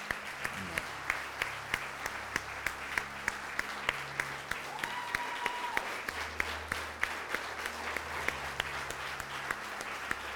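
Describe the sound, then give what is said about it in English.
An audience applauds steadily, a dense wash of many hands clapping with a few sharper claps standing out, sustained at an even level throughout with low murmurs beneath. “Yeah, I was just going to say you can stop clapping now.”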